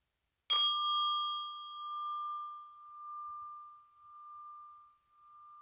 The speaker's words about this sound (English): And I will ring the bell to invite you to concentrate on yourself and your breathing.